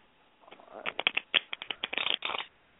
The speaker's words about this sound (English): Is everybody shuffling now? Everybody shuffling. We're going to get to work.